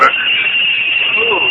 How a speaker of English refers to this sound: Those bells give me a headache. I think I'll put in a buzzer.